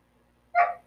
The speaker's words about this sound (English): But my dog is still barking. Can you not?